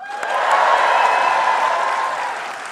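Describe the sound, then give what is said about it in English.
A crowd cheers and claps steadily for about three seconds, making noise to vote for which household item they think is more valuable, a dense wash of applause with sustained shouted voices rising over it before tapering off slightly at the end. “So make noise for what you think is going to be more valuable.”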